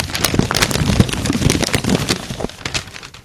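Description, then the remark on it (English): Papers rustle and crinkle steadily for a few seconds, a dense, crackly stream of dry scraping bursts that fades slightly toward the end, with no voices over it. “Well, we've done Daredevil and paper, and now I believe it's time to rustle some papers.”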